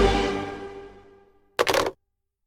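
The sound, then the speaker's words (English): A resonant, ringing tone slowly fades away, then after a brief silence comes one short, loud crunch of someone biting into a crisp ghost cookie, with a few quick crackles packed together. “Crunch. I broke a tooth. Eating my ghost cookie”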